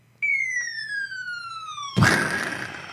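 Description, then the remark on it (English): A cartoonish falling-bomb sound effect: a steady whistle slowly drops in pitch for nearly two seconds, then cuts into a loud, crackling explosion that rumbles and fades out. “somebody dropped a bomb on my head that sounded like this.”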